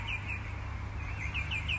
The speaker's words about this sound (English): I love my bird song too. Listen to that. What a pleasure to share that with you from the portable, disposable hot tub in Eltham, Victoria, Australia.